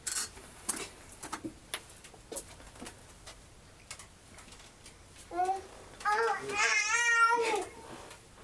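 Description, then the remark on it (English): A fussy baby babbles and whines in short bursts, the voice rising into higher, wavering cries toward the end, with a few soft ticking clicks earlier on. “This long pause brought to you by a fussy baby.”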